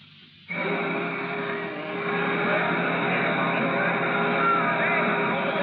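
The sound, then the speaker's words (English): A boat engine cuts in abruptly after a brief quiet moment, then holds a loud, steady drone with a hum and a broad wash of water noise until the end. “What a lovely boat.”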